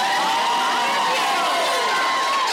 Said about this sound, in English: Round of applause if you've been to the Stanley Hotel.